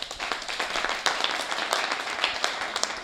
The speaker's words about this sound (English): Reading is fundamental, y'all. And our hardworking librarians deserve a round of applause.